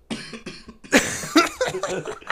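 A harsh coughing fit: several rough, hacking coughs come in quick, uneven succession, growing louder and more strained partway through.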